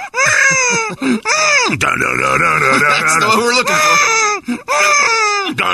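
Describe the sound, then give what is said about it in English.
A voice imitates a baby screaming: several loud, sustained wailing cries with swooping, strained pitch and short breaks between them, followed by a brief spoken remark. “Is that something that you pick up on, you know, like you hear a good baby scream?”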